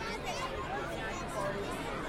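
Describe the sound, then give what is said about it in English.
Dense crowd chatter at a holiday show as people push toward an eggnog and cookie selection, a steady hubbub of many overlapping voices with no single speaker standing out, holding at a fairly even level throughout. “Now we're just fighting the crowd, trying to get to our eggnog and cookie selection.”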